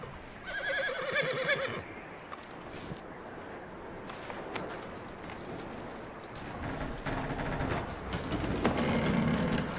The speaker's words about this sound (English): That looks like a decent horse. You should keep him. Tie him up over there,